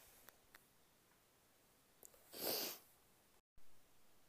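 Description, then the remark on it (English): A single sharp sniffle from someone with a cold, a short breathy burst with a few faint clicks around it. “I am a little sick, so if you just heard me sniff, sniffle, I think that's what you call it.”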